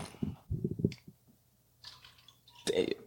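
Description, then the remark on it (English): A straight shot of Centenada liquor being poured and splashing back, heard as a few soft, irregular wet gurgles followed by a louder, fuller splash at the end. No one speaks. “I heard that. It's that splashback, boy.”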